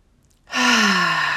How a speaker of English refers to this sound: So I want you, if you're able, to sit in a chair and take three deep breaths and hold them at the top and really exhale.